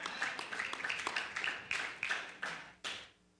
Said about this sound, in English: Oh, very few claps. Let's do it one more time.